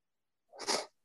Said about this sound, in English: I'm sorry. I had a sneeze and it was like, I was holding it in.